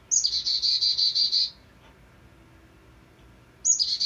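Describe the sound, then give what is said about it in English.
A chickadee's alarm call: a rapid run of harsh, buzzy 'dee' notes repeated about eight times, then a pause and another burst starting. Clear, with no voices. “So if they see an eastern screech owl, it will be like chickadee-dee-dee-dee-dee-dee-dee.”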